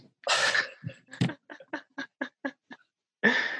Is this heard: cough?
yes